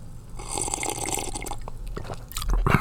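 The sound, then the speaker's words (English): A wet, deliberate slurp of someone sipping a drink, with liquid gurgling noises and a louder swallow-like burst near the end. No talking. “So I'm just going to take a little sip here.”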